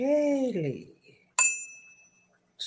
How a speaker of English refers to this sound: And let me ding the bell. Let's get some good flow.